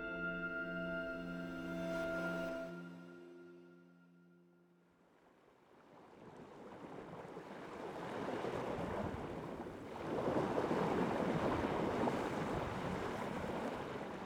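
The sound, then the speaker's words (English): A steady low humming drone fades out, giving way to loud, rushing coastal wind and crashing waves that swell and grow stronger toward the end, in Alaska's far northeastern region, in the Arctic National Wildlife Refuge. No voices. “Those are the sounds of Alaska's far northeastern region, home to the Arctic National Wildlife Refuge, or ANWR, a federal protected area since 1960 and one of the United States' most remote regions.”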